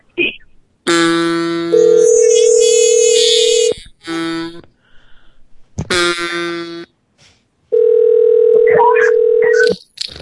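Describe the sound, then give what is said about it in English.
Telephone dialing followed by ringing tones as a call is placed to the speaker's brother: several loud, steady electronic tones in repeated bursts of a second or more, with short pauses and a few fainter, fluttering sounds mixed in. “And he'll answer the phone.”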